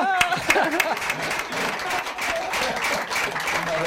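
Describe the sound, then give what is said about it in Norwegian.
A crowd applauds steadily, a dense wash of many hands clapping at an even loudness, with a few voices briefly audible at the start. “Jeg får kjenne en applaus.”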